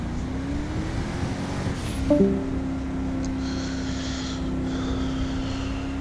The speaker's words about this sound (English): That's different. Who has a helicopter? Oh my god. Not again.